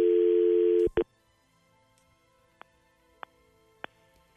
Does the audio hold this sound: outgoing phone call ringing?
yes